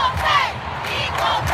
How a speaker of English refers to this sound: And we saw at the last World Cup, fans in the crowd in France chanting, equal pay, after they won a championship.